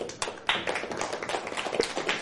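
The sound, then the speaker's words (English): A crowd claps together for the announcements in a dense, steady burst of applause, many overlapping hand claps forming a bright, crackling wash that holds at a fairly even level with no voices. “Applause for the announcements.”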